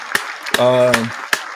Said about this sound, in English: I know Keenan ain't watching the show right now, but I'm going to give my man a round of applause. His birthday today.